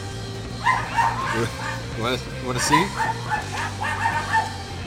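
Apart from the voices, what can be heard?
dogs barking excitedly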